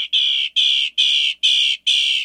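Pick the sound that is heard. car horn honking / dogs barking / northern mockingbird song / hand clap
northern mockingbird song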